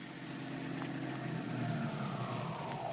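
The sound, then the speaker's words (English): A car engine rumbles steadily, its pitch sinking toward the end as Dick Tracy's car slows and pulls up outside the apartment house where Tess Trueheart lives. No one speaks. “The great detective is just stopping outside the apartment house where Tess Trueheart lives.”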